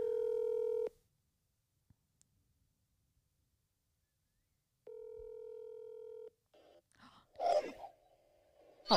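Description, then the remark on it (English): A phone call rings out over the line: two steady electronic ringback tones separated by a long silent pause, followed by a brief, muffled voice answering as the call connects. “Let me try my stepdad. He's not going to answer either.”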